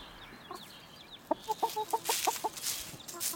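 chickens clucking

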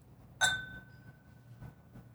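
whiskey glasses clinking

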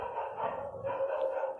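dog barking and howling

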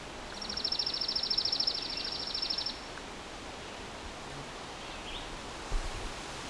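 chipping sparrow song

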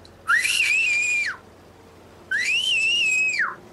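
loud human whistling

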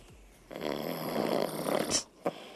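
man snoring loudly

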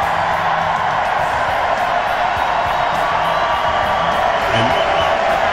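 rally crowd cheering

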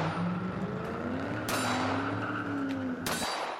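car speeding away

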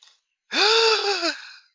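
gasp

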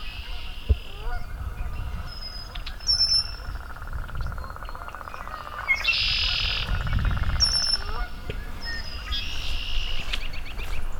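american robin song

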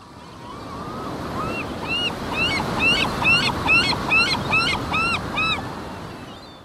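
ocean surf and wind

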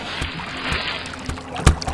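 canoe paddling through water

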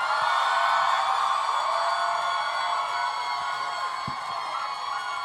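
audience cheering

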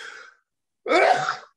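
sneeze

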